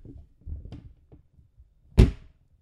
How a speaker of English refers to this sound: Okay, time to close the car door.